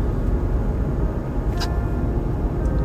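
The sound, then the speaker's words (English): A bus passes through an intersection, rumbling loudly with a deep, steady engine roar that fills the scene, punctuated by a brief high hiss partway through. No one speaks. “Holy bus. That really put a pickle in that intersection.”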